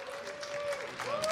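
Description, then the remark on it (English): A burst of live audience applause welcoming Johnny Football, dense and steady clapping that stays at an even, fairly loud level throughout, with a thin sustained tone faintly riding over it. “Can I get a round of applause for Johnny Football, please?”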